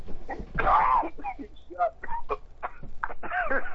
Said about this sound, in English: Yeah, cough that up.